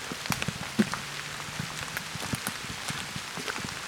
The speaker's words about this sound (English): As you can hear, it's raining a bit.